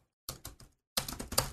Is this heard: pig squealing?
no